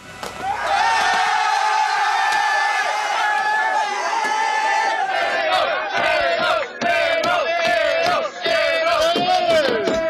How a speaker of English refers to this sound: Ajax wint de beker en in de bus op weg naar de arena waar het team gehuldigd gaat worden zingen ze medespelers 1-0 toe.